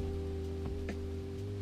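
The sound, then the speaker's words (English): A steady, even wash of heavy rain pouring down, with a constant low hum underneath and a couple of brief soft taps. No one speaks. “Holy shit, the rain's coming down really hard.”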